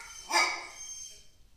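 A single sharp, clear dog bark rings out, then trails off into quiet background noise. No one speaks.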